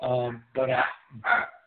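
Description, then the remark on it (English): A dog barks three times in quick succession, loud, with short pauses between each bark and no other sounds around them, riled up by someone knocking on a desk. “I got the dogs all riled up, knocking on my desk.”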